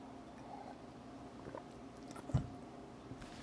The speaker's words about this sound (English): Let's jump right into it. I'm going to take a quick drink of water real quick.